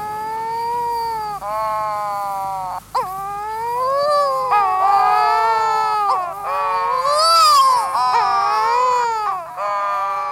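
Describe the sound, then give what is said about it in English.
Eerie, drawn-out moaning calls of courting pairs of wedge-tailed shearwaters, dark, gull-sized seabirds, rising and falling in wavering, baby-like wails that overlap continuously with harmonic tones, with no speech. “Some early sailors feared this ungodly wailing meant they had been tricked ashore at the gates of hell itself, when in truth, they stood shuddering among courting pairs of seabirds called wedge-tailed shearwaters.”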